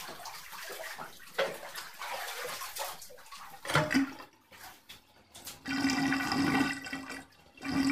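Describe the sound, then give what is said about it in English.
Bathtub water rushes and swirls down the drain, fairly loud, with gurgling surges and a brief lull partway through before the draining picks up again. No one speaks. “The water won't go down the drain of the tub.”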